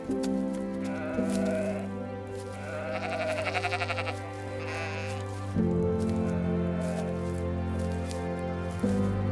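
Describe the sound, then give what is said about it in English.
A herd of sheep being brought home bleat in a wavering, quavering call that rises in the middle, set against a steady, sustained drone of background music that shifts a few times. “I'll get the herd home.”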